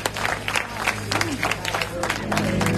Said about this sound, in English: Give God a loud hand clap.